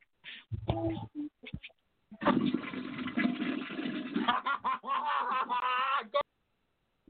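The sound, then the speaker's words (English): A prank caller flushes a toilet over a tinny phone line into a call-in show, a rushing, gurgling whoosh lasting about two seconds, with bursts of laughter before it and more laughing as the water fades. “If it's Toilet Flush Guy, that would one, be hilarious”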